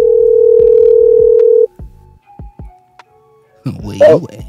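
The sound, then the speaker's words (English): A steady electronic ringing tone from an outgoing phone call hums for a second and a half, followed by a few sharp clicks and a short pause before a voice picks up and starts talking. “It's ringing.”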